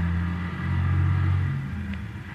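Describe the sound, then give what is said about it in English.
A car with only one headlight on comes down a hill, its engine droning with a deep, steady rumble, its pitch rising slightly as it revs over a couple of seconds, with no voices. “There's a car coming down the hill toward us.”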